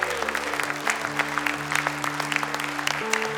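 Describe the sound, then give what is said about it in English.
An audience at Horizon Church claps together to honor the mums on Mother's Day, in a steady, dense patter of many hands, moderately loud throughout, with a low sustained hum droning underneath and no one speaking. “Mums, stay seated, and the rest of us, we're going to give you a great clap of encouragement.”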